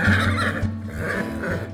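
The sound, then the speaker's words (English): A single horse neighs loudly, a long quavering whinny that rises and falls for nearly two seconds, with no one speaking. “Fine, we're taking your horse.”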